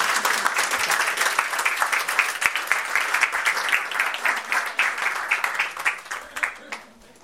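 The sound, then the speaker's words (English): A church audience claps steadily for about seven seconds after a blessing at the presentation of a child, a dense patter of many hands that holds its level, then thins and fades out at the end. “And can we applaud that?”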